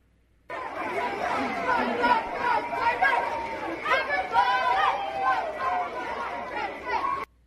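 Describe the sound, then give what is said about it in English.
A crowd of children yelling, shouting, cheering and chanting "pride" at a parade, a dense, continuous wash of overlapping raised voices that holds steady for several seconds without pause. “Here's a little snippet of the parade of the kids yelling and shouting and cheering, pride, pride, pride.”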